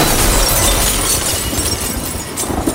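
A loud crash of an apartment window blowing in during a 60 mph storm, with glass shattering amid a dense, roaring wash of noise that stays intense for a few seconds as the wind rushes through the apartment.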